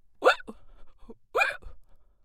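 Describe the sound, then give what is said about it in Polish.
Two soft hiccups about a second apart, each a short voiced gulp, fairly quiet, with no talking around them; a voice seems to be imitating the hiccups. “pobladł na samą myśl o zimnych nóżkach i dostał czkawki”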